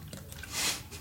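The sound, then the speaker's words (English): Someone takes a quick drink of water: soft wet mouth and swallowing sounds with a brief slurping hiss in the middle, lasting about a second with no talking. “So I'm just reluctantly having this water.”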